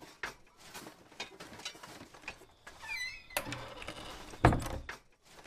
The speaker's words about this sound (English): opens the door to the storage shed and fusses about in the darkness.